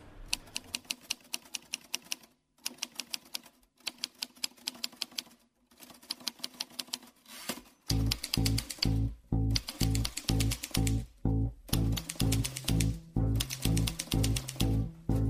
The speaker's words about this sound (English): Well, that's supposed to be like a typewriter. Yeah, I thought she was chopping up her grains for a hot pot.